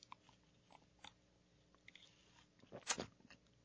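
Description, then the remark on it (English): A close-miked sip: faint wet mouth clicks and small smacks, then a short, louder slurping burst near the end, with no one talking. “So just hold that up to the mic and let's get a good sip on this”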